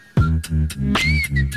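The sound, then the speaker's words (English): A thin, steady whistle pushed through the teeth by a beatboxer, sliding slightly in pitch over his deep rhythmic vocal backing with regular percussive bursts, loud. “Whistling through his teeth.”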